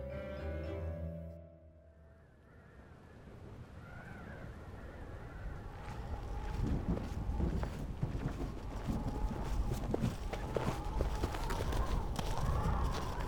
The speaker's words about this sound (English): With two shallow footsteps, you hear crunching beneath your boots. A sound that contrasts the hollow gusts of wind.